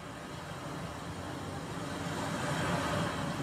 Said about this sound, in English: Amazon, play ocean sounds. Hey, if you guys want it for nature sounds, it sounds really good. It does. That sounds real good. That sounds real pretty full.